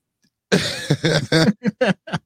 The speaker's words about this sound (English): Gotta clear my throat. Let me clear my throat.